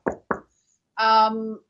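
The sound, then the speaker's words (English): Two quick, sharp knocks on wood, made for luck, distinct, followed after a short pause by a brief stretch of a person's voice. “And, you know, we kind of didn't have the start of World War III, thank God, touch wood.”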